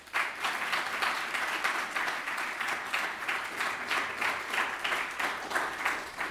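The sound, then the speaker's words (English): Steady audience applause welcoming a lecturer to a Wednesday Night Rights lecture at Lund University, a dense wash of many hands clapping at an even loudness for several seconds, with no voices over it. “So give him a warm applause and enjoy the lecture.”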